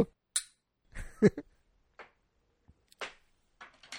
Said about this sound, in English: we clinked